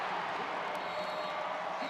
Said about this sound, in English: And here comes the crowd at Lawler Event Center. Fans on their feet.